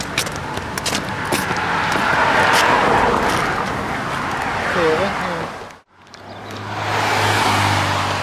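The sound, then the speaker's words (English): Cars pass along Creighton Road, a few once in a while, a broad whooshing swell of tire and engine noise that rises and fades, with a brief drop before another vehicle approaches; faint voices are present underneath. “We're on Creighton Road, and there's just some cars, a few cars once in a while going by.”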